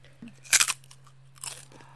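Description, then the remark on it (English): A sharp crunch as a crisp ridged Heartland potato chip is bitten, a loud brittle snap followed by a second, softer crackle of chewing moments later, with a faint steady hum underneath. “Like, immediately I can say the chip has ridges on it. That's the type of crunch it sounded like.”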